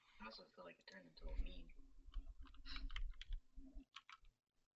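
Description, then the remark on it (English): Rapid computer keyboard typing clicks in short bursts, fairly quiet, running beneath a person talking throughout; the typing is a search on the Rotten Tomatoes website. “Oh, damn, I'm typing Rotten Tomato into Rotten Tomato.”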